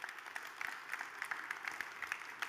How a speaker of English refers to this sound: Yeah, you can clap for that.